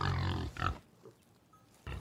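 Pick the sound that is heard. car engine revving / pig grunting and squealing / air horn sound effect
pig grunting and squealing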